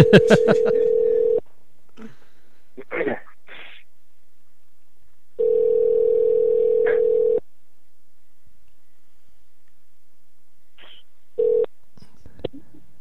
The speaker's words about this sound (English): We're just waiting for it to start ringing here. There it goes. It's ringing.